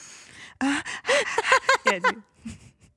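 A voice acts out heavy breathing: a breathy exhale, then a quick run of loud, voiced panting gasps and moans, trailing off into softer breaths.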